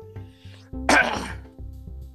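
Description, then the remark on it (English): A single sharp cough bursts out, loud and brief, after a big drink of water went down the wrong pipe, standing out against a steady low hum in the background, with no talking. “I might cough a little bit during the episode.”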